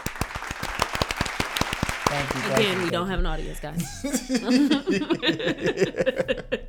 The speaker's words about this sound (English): Can we get some audience claps?